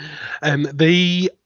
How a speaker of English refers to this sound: Excuse me. I've been trying to suppress that cough for the last 10 minutes.